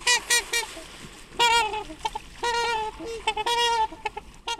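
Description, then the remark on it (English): Trumpeter swans give a series of loud, brassy honking calls, some short and clipped, others drawn out, in overlapping bursts like horns with no talking. “Because now I saw this, one of the websites I was reading said they're called the Trumpeter swan because of their calls, which have been compared to a French horn.”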